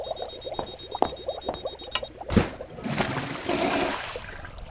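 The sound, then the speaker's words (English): Water churns and bubbles steadily inside a tank as spores are mixed into it and it is aerated and pressurized, a continuous gurgling, aerated rush with scattered clicks and splashes, swelling somewhat louder and fuller in the second half. No voices. “The spores are being mixed with water in the tank as designed. It's being aerated and pressurized as designed.”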